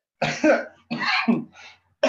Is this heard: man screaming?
no